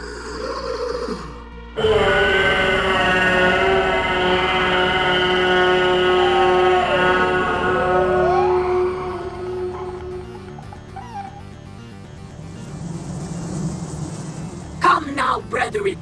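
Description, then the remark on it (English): A human voice lets out a long, loud, wailing screech of bereavement, meant to summon insects such as tarantulas and praying mantises, lasting several seconds, its pitch wavering and bending before trailing off into quieter sounds and a brief voice. “I shall summon my playfellows with a screech of bereavement.”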